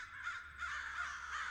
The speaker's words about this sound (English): Oh my gosh, that's such a good bird sound for a Game Boy.